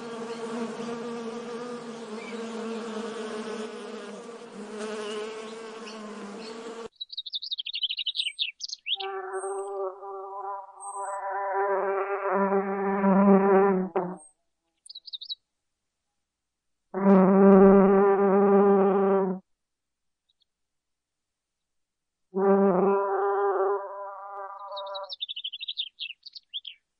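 Honeybees buzzing around a hive in a sunflower field, in a steady harmonic drone that swells and breaks off into separate bursts, with a few faint high bird chirps in the gaps.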